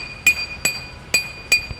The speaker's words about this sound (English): she watches in disbelief as construction workers remove cobblestones with pickaxes.